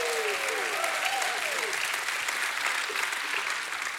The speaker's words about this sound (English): If you're thankful that your sins have been washed away, give God another hand clap and a shout of praise.